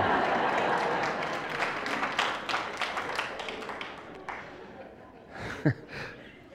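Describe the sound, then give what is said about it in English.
A short burst of audience applause: many hands clapping in a dense, rapid patter that thins out and fades over a few seconds, with a brief murmur of voices toward the end. “Well, aren't you going to clap about that?”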